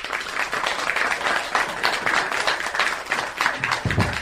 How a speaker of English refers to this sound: We have the most fantastic group of helpers in here, and I would love to give them all a big clap.